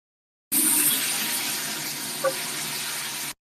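Shower water runs in a steady hiss for about three seconds while someone is in the shower, a dense constant spray with one brief small knock partway through, no voices.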